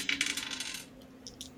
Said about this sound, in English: And... go ahead and roll your dice.